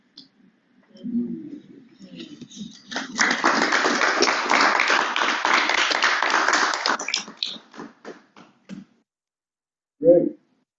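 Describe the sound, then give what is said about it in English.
An audience breaks into a burst of dense, loud clapping lasting several seconds, then it thins to a few scattered claps before dying out. Murmuring voices can be heard under and around it. “I ask you not to clap.”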